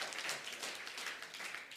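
A round of applause: a crowd's many hands clapping in a dense, even crackle that holds steady throughout, fairly soft overall, with no one talking over it.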